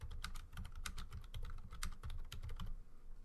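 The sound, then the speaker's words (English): Rapid, intense typing on a computer keyboard, a dense run of sharp key clicks with no voices over it, as a Twitter poll is being put up on Twitter. “Intense typing while we put a Twitter poll up on Twitter.”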